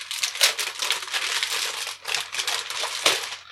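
Continuous crinkling and rustling of wrapping paper as Christmas presents are opened, fairly loud, with sharper crackling bursts as the paper is scrunched and torn open. No one speaks.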